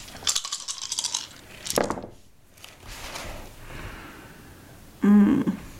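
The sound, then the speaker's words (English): Dice are rolled for a composure plus wits roll, clattering across a hard surface in a few quick bursts: a longer rattling tumble at the start, a brief click shortly after, and a final louder clack near the end, with no talking. “So make a composure plus wits roll, please.”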